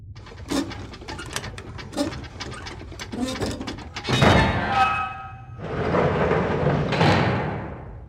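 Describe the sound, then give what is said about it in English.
A series of heavy metallic clunks and clicks, then a rising metal squeal as a metal wheel-like manual override mechanism on a locked door is turned to the right, followed by a sustained rushing hiss as the lock releases. No one speaks. “There'll be a metal wheel-like mechanism on the door. Turn it to the right to open the lock, and you should be able to get in.”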